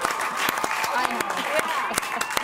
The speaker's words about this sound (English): I'm clapping, I don't know the rules, but good.